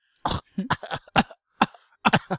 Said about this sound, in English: Nice fake cough.